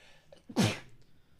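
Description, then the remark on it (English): A single sharp sneeze bursts out, loud and brief, with a quick inhale just before it and near quiet on either side. “Bless you.”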